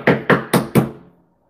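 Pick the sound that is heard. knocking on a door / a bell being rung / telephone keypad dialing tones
knocking on a door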